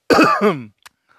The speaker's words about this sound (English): Gotta clear my throat on this one.